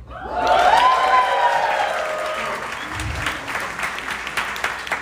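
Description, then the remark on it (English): An audience breaks into loud applause with whoops and cheers rising at the start, then settles into steady, dense clapping that continues to the end. “I know you guys just clapped for me because I look really cute, but I'm going to have you clap for me again because I'm a woman in tech.”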